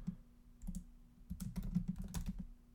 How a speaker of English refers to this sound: And I'm typing this out just to make sure.